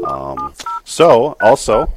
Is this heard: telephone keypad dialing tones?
yes